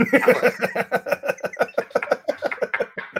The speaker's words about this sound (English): A guy slamming a desk.